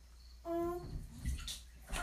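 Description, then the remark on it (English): Someone takes a mouthful of water, with a brief squeaky tone followed by wet gurgling and sloshing. Short and fairly quiet, with no talking. “don't put water in your mouth.”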